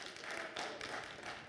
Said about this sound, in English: How many of you were there at our marriage retreat? By applause.